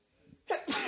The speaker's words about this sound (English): I apologize. Bless you. No, it's a very dramatic sneeze, but go ahead.